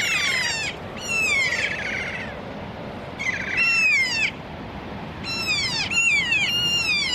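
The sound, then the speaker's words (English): Four kea parrots around the listener give loud, harmonic, drawn-out screeching calls in repeated bursts, some overlapping, over a steady outdoor background with no talking. “Four birds around us at the moment, it's all go.”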